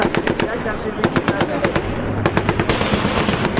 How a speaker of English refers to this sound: It took nearly an hour before all the firing stopped.